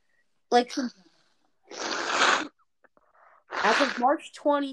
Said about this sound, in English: Hold on, I had to blow my nose. I am congested.